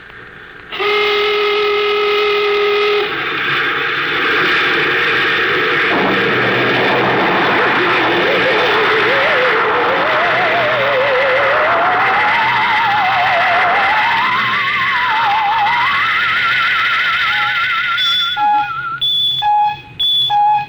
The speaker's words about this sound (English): Bridge to engine room. Prepare to blast off on navigator signal.